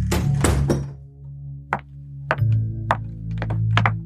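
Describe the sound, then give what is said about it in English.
A front door closes with a heavy thud as someone walks out into the early evening, followed by several sharp knocks and clunks spaced over a few seconds, with no one speaking. “See you in a bit, shouts Magpie over her shoulder as she walks out the front door.”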